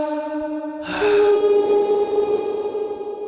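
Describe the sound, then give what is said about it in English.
An echo sound effect: a steady harmonic hum gives way to a sudden loud, breathy rush, with a ringing tone lingering through the sustained noise. No one speaks. “There's no need to make, you've already done so many goddamn echo sounds.”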